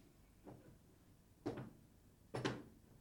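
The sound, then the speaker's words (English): A creaky door opens in three short, rising groans spaced about a second apart, each scrape a little louder than the last, with no voices alongside. “Creaky door.”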